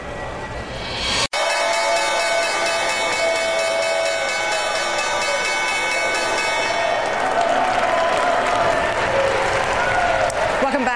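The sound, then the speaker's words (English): Steady applause and cheering from a crowd at the New York Stock Exchange, layered over the sustained, ringing tone of the opening bell rung by Equitable. A brief dropout comes early, then the clapping continues loud and unbroken throughout. “First Move live from the New York Stock Exchange and Equitable ringing the opening bell this morning.”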